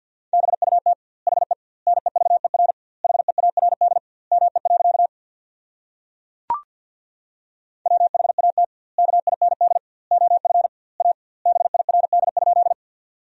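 Rapid Morse code sent at 50 words per minute with double word spacing, sending sentences built from the top 400 words: a steady mid-pitched tone keyed into quick bursts of dots and dashes, grouped into words with gaps between them, plus one brief click partway through.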